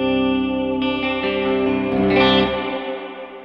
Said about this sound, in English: That gives the reverb trail a little bit of subtle modulation to kind of make it like spooky somehow.